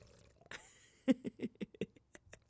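A drink is sipped right into the microphone: a brief slurping intake, then a quick run of about six wet swallowing gulps in a steady rhythm, fairly loud, with no talking.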